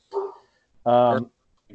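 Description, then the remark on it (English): Dogs bark at the beginning of a recording in a few sharp bursts: a higher yelp, then a louder, fuller bark, and a brief final yip, with short silences between. “I love that my dogs just decide to go crazy at the beginning of our recording.”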